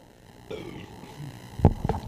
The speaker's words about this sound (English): Like I was saying before I burped so hard.